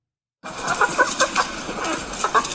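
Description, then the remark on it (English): A chicken, judged by an AI to be tired, clucks in a quick series of short, moderately loud calls, some rising into brief squawks, over a steady background hiss with no talking. “AI says that's just a tired chicken.”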